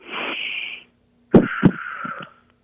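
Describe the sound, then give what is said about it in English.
A long, hissy breath in heard over the phone, a short pause, then a rougher breath out broken by a couple of sharp, crackly bursts, giving a congested, rattling sound. No one speaks. “Just a deep breath in and a deep breath out, and I'm going to monitor your breathing.”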